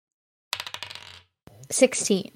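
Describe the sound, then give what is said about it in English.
A quick clattering rattle of dice, rolled for a player's turn in a game and landing on 16, tumbling across a hard surface, a burst of rapid clicks lasting under a second, followed by a short stretch of someone talking. “Okay, gonna roll.”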